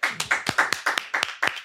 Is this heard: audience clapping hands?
yes